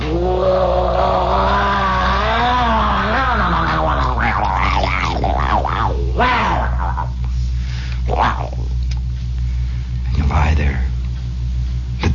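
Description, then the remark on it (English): A motor scooter goes by, its small engine buzzing and wavering up and down in pitch before fading out, leaving a steady low hum and a few faint later rumbles. “And then the sound of a motor scooter.”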